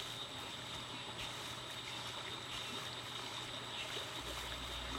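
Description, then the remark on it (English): Steady, continuous flowing water with a soft rushing texture from a small creek running not too far away before it joins a river, with a faint low hum underneath and no voices. “A small creek ran by not too far away before joining up with the river that flowed back through Bemmel on its way to the sea.”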